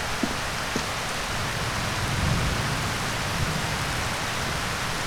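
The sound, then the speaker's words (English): Steady acid rain pours down, a dense hiss spread evenly across the whole stretch, with a few sharper drips and taps landing on surfaces. No one speaks. “we're not supposed to be around that acid rain without your suit on.”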